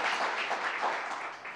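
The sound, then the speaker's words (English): An audience breaks into steady applause for Senator Bishat Hermelin, a dense wash of many hands clapping at an even, fairly loud level throughout, with no voices standing out. “Let's give a huge round of applause to Senator Bishat Hermelin.”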